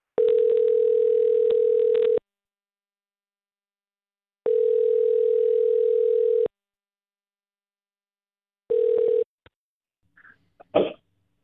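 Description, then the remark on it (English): A telephone line tone on an outgoing call: two long steady buzzing rings with pauses between, a third cut short by a click, then a brief cough-like sound from the line. “let's call … and see if we can figure out what happened”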